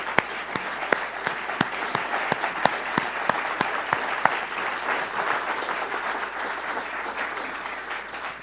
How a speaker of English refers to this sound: So stand on up if you could, if you'd like to, and receive a round of applause.